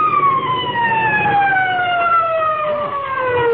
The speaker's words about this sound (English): Must be an awful big fire someplace, though, even if we couldn't find it. Hey, you know what? I can still hear them sirens. Listen.